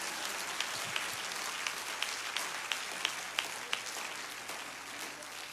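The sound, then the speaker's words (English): A church audience claps their hands unto the Lord during a sermon, a steady wash of many overlapping claps with a few sharper individual ones standing out, sustained for several seconds without any talking. “Would you clap your hands unto the Lord for a moment?”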